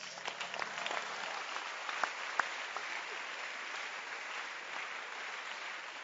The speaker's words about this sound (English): Clap your hands for the center leaders.